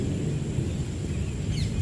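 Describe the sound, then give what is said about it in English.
Steady, dense rainfall on a meadow with a deep, continuous rumble of thunder underneath, and a few faint bird chirps near the end. No one speaks. “The sounds of the raindrops filling the air and blocking out the noise of the world.”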